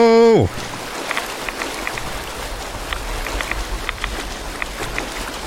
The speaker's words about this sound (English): We're gonna run across this whole gross water.